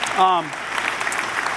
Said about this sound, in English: And I got to applaud the children's ministry department to thank you for that. It's just something beautiful of it.